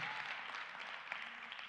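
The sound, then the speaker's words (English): An audience claps steadily in praise to Jesus, a dense wash of many hands with no clear individual beats, holding an even, moderate loudness throughout. “If you do, let's give Jesus a hand clap for praise.”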